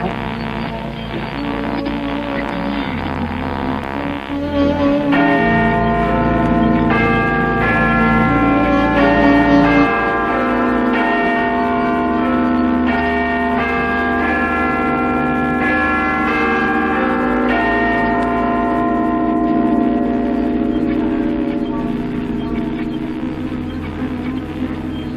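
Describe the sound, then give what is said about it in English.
Big Ben's bells ring out the old year and ring in the new at New Year, in a sequence of loud, resonant strikes, each tone lingering and overlapping the next over a low steady rumble. No one speaks. “In a few moments, you can hear Big Ben ringing out the old year and ringing in the new.”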